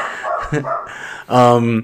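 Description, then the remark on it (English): A dog barks loudly, a short yelp followed by a longer, drawn-out bark, with a faint voice murmuring in the background. “Dogs freaked out over there.”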